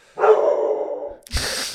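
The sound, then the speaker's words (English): A dog lets out one loud, drawn-out bark, followed a moment later by a short, harsh burst of noise. No one speaks. “How scary, isn't that like the scary bark for what she actually is?”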